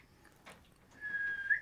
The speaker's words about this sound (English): That's a good whistle. Come get her.